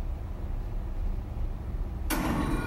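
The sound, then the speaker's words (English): A low, steady rumble hangs in the background until a sudden loud, harsh burst near the end as a man in a white lab coat bursts through a heavy metal door at the end of a windowless laboratory corridor, its noise continuing afterward. “Suddenly, a balding man in a white lab coat bursts through the door and bolts down the corridor.”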